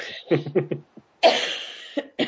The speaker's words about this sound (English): I'm hoping he is, because I'm about to cough.